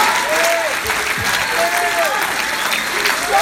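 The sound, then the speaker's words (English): A church audience claps together during a morning service to give God glory, a dense, steady wash of applause that holds loud for the whole stretch, with a few brief voice-like calls rising faintly above the clapping. “Let's clap. Let's give God glory this morning.”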